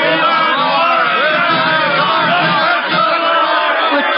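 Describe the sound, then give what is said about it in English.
A crowd of exactly 97 people cheers and hollers outside on faculty row for a professor without pause, dozens of overlapping voices shouting and whooping in a loud, dense roar that holds steady for the whole stretch. “Well, they seem to be cheering for you, Professor.”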